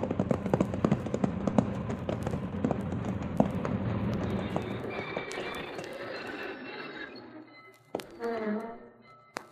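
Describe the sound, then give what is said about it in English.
Horse hooves clip-clop in a steady, fairly quick rhythm over a rumbling background, gradually fading, followed by a brief harsher burst of noise near the end. “All right, Cherokee, down off that horse and let's go.”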